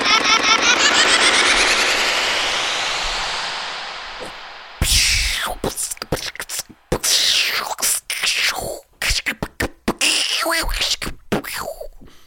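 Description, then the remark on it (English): Fireworks going off: a loud, dense crackling roar for several seconds, then an irregular barrage of sharp bangs and pops mixed with rising and falling whistles. “You guys hear that? Yeah, that's the fireworks.”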